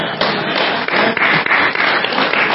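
A crowd applauds steadily, many hands clapping together into a dense, loud, continuous wash of claps that holds at an even level throughout, with no voices standing out.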